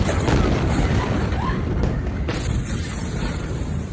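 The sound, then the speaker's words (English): A massive ammonium nitrate explosion at the port in Beirut roars loudly at 6:08, 35 seconds after a first explosion, forming a mushroom cloud: a dense, distorted wall of rumbling noise that stays sustained throughout, with a fresh surge of blast partway through as the boom rolls on. “35 seconds after the first explosion, at 6:08, the ammonium nitrate detonates in a mushroom cloud.”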